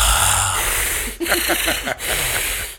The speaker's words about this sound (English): There's another very positive, supportive friend who needs to move the mic slightly further away because all I hear is breathing.